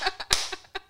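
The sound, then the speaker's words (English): Hands clap three times, sharp, crisp and bright, with one clap ringing out louder than the rest; no voices accompany them. “Now that I've clapped 3 times like a crazy I did not know that you were gonna clap 3 times.”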